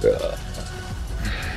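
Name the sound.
burp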